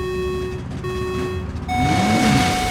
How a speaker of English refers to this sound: And the trucks are speeding down the raceway.